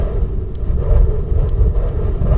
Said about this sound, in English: This is …'s Outdoors 59, and you probably can hear some wind howling.